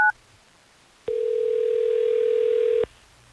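A short electronic blip, then a steady telephone dial tone hums clearly for nearly two seconds before cutting off abruptly, as Hot 101.5 radio hosts place a call to a listener, with no one speaking.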